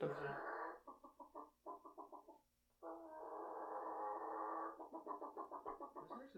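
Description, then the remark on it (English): A man's voice imitates a chicken call, rapid staccato clucks in bursts broken by a long drawn-out squawk, then more quick clucking, loud. “You want to hear my chicken call?”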